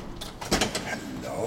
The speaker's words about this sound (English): But as the door closes behind us, five enormous shadows move quietly towards us.